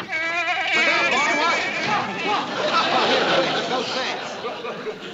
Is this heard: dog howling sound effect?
no